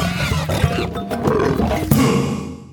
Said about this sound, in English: And that brings us to... Stereotypical Animal Podcast Theme Song. Here to bring you to conservation news.